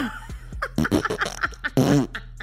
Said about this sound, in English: The baby turned around, lifted up his alb in the rear and farted.